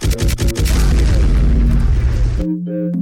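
A heavy, booming bomb-drop effect with a dense low-end rumble and crackling burst, sustained for a couple of seconds before cutting to a deep tonal hum, loud.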